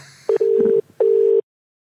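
A telephone call to Adam Spencer, Australian mathematician, goes through: a brief blip, then steady electronic ringing tones in two bursts with a short pause between, clear with no one talking.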